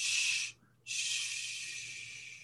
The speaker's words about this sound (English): It's a control shh.